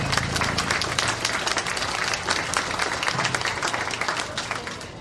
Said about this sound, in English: Let's give all these young YouTubers a round of applause.